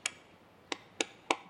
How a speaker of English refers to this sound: A very persistent woodpecker.